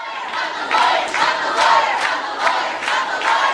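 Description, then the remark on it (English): Hundreds of students at a protest chant "Cut the lawyer" in a gymnasium, loud voices rising in steady rhythmic bursts about twice a second, with no pause between shouts. “Like, say, protests where hundreds of students fill a gymnasium and chant things like, "Cut the lawyer."”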